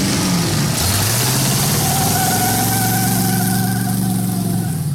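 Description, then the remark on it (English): A powerful supercharged car engine revs up loudly, then settles into a steady, rumbling idle with a high whine running over the deep drone, continuous throughout. “eBay even has cars with supercharged ponies.”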